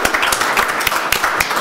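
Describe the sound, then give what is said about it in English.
Steady applause from a crowd, dense overlapping claps forming a continuous bright rattle at fairly high volume, with no voices standing out. “First time you've been applauded”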